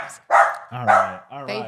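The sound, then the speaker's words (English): Dogs reacting to a person whispering give several sharp, loud dog barks in quick succession, rough-edged, with a couple of lower yippy bursts overlapping near the end. “They heard me whisper, so they thought they should bark.”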